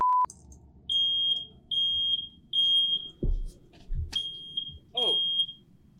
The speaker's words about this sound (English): I don't know what the hell's going on with my fire. Is that yours? Let's check out my fire alarm.